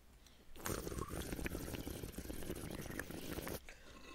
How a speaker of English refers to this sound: Hang on. I'm gonna just take a nice... Nice big ol' rip of my bong.